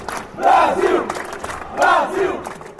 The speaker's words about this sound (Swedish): Framförallt brasilianarna använde tydligen väldigt mycket applåder och klapp i sina ramsor. Brasil! Brasil! Brasil! Brasil!